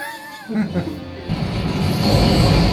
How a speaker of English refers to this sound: That explosion should have been a lot bigger than that.